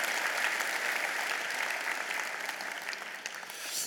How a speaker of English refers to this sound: I just got the message on our group here that we had 14 people baptized this morning, plus another 7 from Reverb. So won't you give them a really good round of applause? Isn't it wonderful?